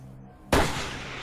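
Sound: gunshot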